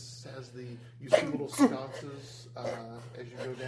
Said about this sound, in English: Bless you.